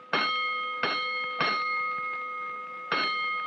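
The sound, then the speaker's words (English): A bright, ringing fire alarm bell strikes out box number 3-2 for a third alarm: three evenly spaced clangs, a pause, then two more, each tone lingering and overlapping with no voices present. “Hold it, Collins, a third alarm.”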